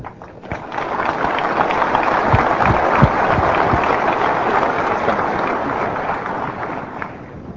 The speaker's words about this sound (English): I guess it's pretty exciting to be from Microsoft and come to an Apple developer conference and actually get applause when you come up on stage.